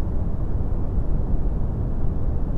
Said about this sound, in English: That's brown noise. Do you hear it?